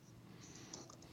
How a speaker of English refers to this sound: Yep, I was typing the punchline into the chat.